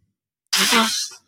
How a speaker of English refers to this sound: That cough hurt my chest.